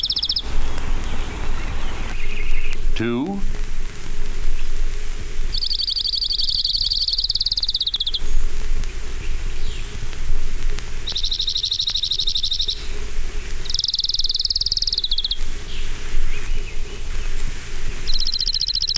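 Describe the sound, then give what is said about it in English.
Orange-crowned warbler song: a bright, high trill repeated about five times at intervals of a few seconds, over steady outdoor background noise. “Orange-crowned warbler.”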